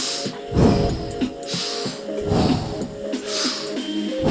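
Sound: deep breathing exercise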